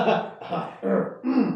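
a cough

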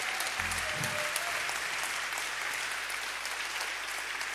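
audience applause

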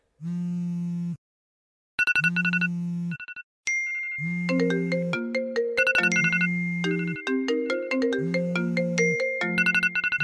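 mobile phone ringtone ringing

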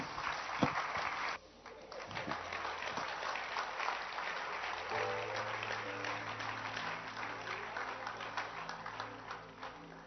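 audience clapping hands

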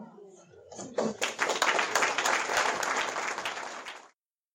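audience applause

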